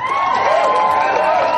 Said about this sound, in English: And also a big round of applause for the wonderful guys and girls who do our sound and lighting, the Circuit 6 and Dr. Andy's team. Give them a round of applause too.